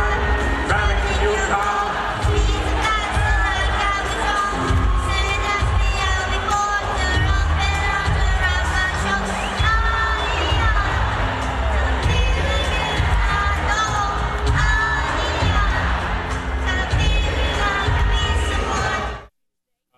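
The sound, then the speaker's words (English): A large crowd cheers and roars steadily for about twenty seconds, loud and dense, with singing voices and music blended into the noise before it cuts off abruptly, during a Make-A-Wish song sung together on set. “hard to find a dry eye in there between the cheers.”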